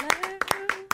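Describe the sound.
About six sharp hand claps land in a loose, uneven rhythm, crisp and fairly loud, while a steady voice hums or talks underneath them.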